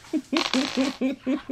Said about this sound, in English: All right, that's me hitting the GM screen that has all my dice behind me. Oh, that's what that was.